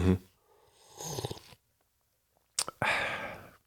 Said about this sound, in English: And still, let me take a little sip here, a little sippy poo.